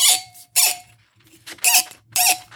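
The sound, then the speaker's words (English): A squeaky corkscrew squeaks sharply in four rhythmic bursts as it twists into the cork of a wine bottle to pull it, each bright, grating squeal separated by short pauses. “Oh, I got a squeaky corkscrew.”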